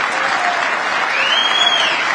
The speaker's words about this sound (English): Look at all these women applauding, standing up.